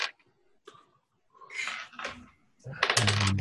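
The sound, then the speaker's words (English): Dice, including a penalty die, clatter and tumble across a hard tabletop in a few quick bursts of clicking, ending in a louder rattling flurry as they settle. “I got a 27 out of 85, so really good roll.”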